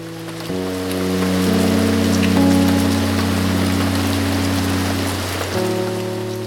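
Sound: heavy rain falling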